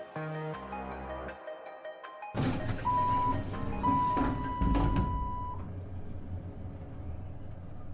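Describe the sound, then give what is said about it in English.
A tonal chime-like hum gives way to a heavy thunk as the doors of a small elevator shut, followed by clattering, a thin whine, and a steady low mechanical rumble as the car descends the entire height of a building. “The elevator doors close, and it starts to descend the entire height of the building.”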